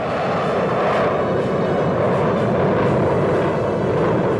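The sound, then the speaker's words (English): A loud, sustained roar of a formation of jet aircraft rushing past after the top of a loop, hurtling back down towards the runway past a crowd, a dense, unbroken rumble with a slight pulsing swell and no voices. “Each plane in turn tops the hill and they're hurtling back down towards the runway.”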